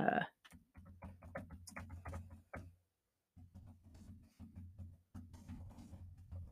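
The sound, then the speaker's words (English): Quick, uneven clicking of keys on a computer keyboard as someone searches online for an article, in bursts with a short pause midway, over a low steady hum. “You hear that dope ass typing, man?”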